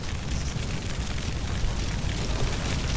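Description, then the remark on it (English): A dense, continuous roar of video game explosions, heavy low rumble with crackling noise on top, staying loud and steady throughout with no distinct pauses and no one talking. “Gotta stop standing in the explosions.”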